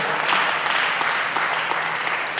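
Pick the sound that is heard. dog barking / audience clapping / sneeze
audience clapping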